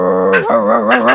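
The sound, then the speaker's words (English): A human voice imitates a dog, a drawn-out yawning tone that breaks into a wavering, growly bark-like sound, loud and alone for about a second. “I just yawn into a dog bark.”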